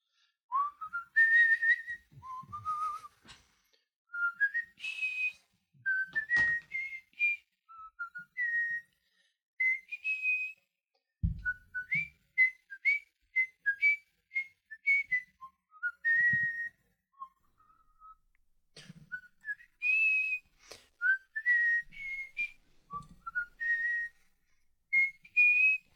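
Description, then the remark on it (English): Someone whistles a melodic tune from copyrighted music for about twenty-five seconds, the notes gliding and hopping in short rhythmic phrases, with a couple of faint bumps in the background. “What did I tell you about whistling copyrighted music?”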